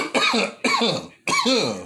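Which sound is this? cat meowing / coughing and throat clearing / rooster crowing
coughing and throat clearing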